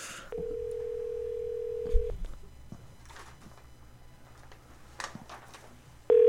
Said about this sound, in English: and so let's give him a call.